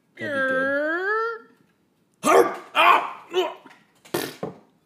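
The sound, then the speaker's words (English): A drawn-out, rising howl followed by four rough, growling barks in quick succession, fairly loud, apparently a human voice imitating a wolf. “There is a wolf backside.”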